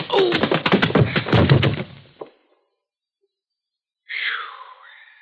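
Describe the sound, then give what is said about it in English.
A loud, rapid burst of gunfire rattles for about two seconds, ending with one last sharp crack. After a pause of silence, a brief high wailing cry rises and fades. “Do you realize what a chance you were taking if he hadn't turned to fire when you kicked open that door?”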